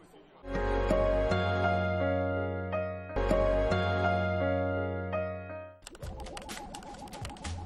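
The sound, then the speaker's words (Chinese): Sustained electronic tones ring out for several seconds, then give way to a short burst of rapid, clattering keystrokes on a classic typewriter, with no voices. “呢部嘢咁经典，绝对可以我嚟做标本。佢除咗打字之外，咩都做唔到噶。”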